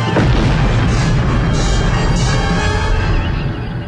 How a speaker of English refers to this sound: Captain, that explosion and fireball was something hitting the planet's atmosphere.